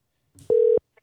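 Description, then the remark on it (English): A phone line's ringback tone while a call is placed: one steady, clear electronic beep lasting a moment, preceded by faint handling noise and followed by a tiny quiet blip. “Ooh, we have a ringtone.”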